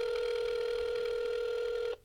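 A single long ringback tone from an outgoing phone call, heard through a speakerphone: a steady, slightly buzzy electronic ring that holds for about two seconds, then cuts off. No one speaks.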